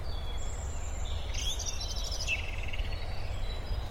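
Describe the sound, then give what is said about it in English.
Birds sing outdoors, with a cluster of bright chirps and trills around the middle over a steady low rumble of background noise; the calls are fairly soft. “I don't know if you can pick up any of these beautiful bird sounds everywhere.”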